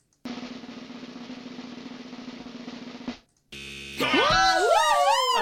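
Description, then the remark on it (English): A loud, flat incorrect-answer buzzer drones steadily for about three seconds, stops abruptly, then gives way to a bright, warbling effect with swooping, sliding pitches. No one speaks. “I finally got to press the incorrect buzzer, but I also...”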